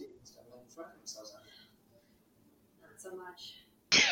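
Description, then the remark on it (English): Soft, quiet vocal sounds and faint murmuring give way to a single sudden, loud sneeze burst right at the end. “Sorry, I had to sneeze.”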